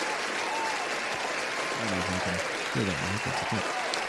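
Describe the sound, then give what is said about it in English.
A crowd applauds steadily with dense, continuous clapping throughout, while a few indistinct voices murmur and call out faintly underneath the noise. “Let me just give some applause.”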